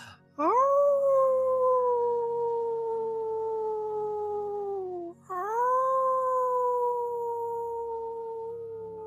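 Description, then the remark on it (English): A person howls like a wolf, two long sustained cries back to back, each gently falling in pitch, loud with a faint hum underneath. “allowing yourself to make any noises and inviting you to even howl in this moment, reminding yourself of your connection with the moon, though above the surface, still bright and connected to your heart.”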